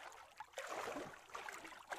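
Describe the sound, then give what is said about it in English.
Water splashing and sloshing as someone wades through a deep, cold river, a continuous churning with a few brighter splashes over about two seconds, no voices. “Uh-oh, a river. A deep, cold river. We can't go over it. We can't go under it.”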